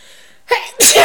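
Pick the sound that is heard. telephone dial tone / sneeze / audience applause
sneeze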